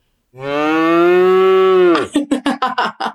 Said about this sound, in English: I know that one. That was a cow.